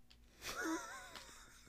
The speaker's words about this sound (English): The guy who coughed. Who coughed?